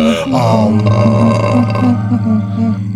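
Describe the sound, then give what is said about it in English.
A long, loud belch made while rating beers, drawn out for about three seconds, deep and rumbling with a wavering pitch, with no talking over it. “We'll be discussing and rating these beers with the Sudge rating plus our signature belching sounds.”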